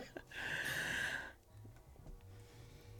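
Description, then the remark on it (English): A heavy, rushing breath blows hard into the microphone for about a second, harsh and airy, then fades to a quiet, low background hum with no talking. “I didn't like all the breathing.”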